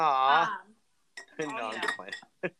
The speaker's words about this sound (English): sorry, I'm getting myself a drink. So if you hear a lot of clanging, but I'm clumsy.